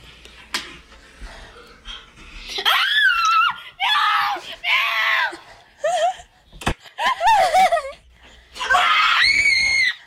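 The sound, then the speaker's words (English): Loud, high-pitched screams from a person doing a skit ring out in a series of long bursts, several shrill and wavering, with short gaps and a sharp smack partway through. The screaming is intense. “Why did you scream so hard?”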